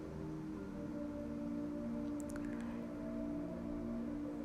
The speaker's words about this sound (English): Can you hear the whales? Listen to them singing.